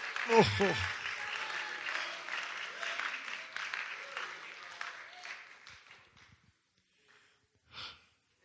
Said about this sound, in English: Clap your hands. Receive it. Never forget it.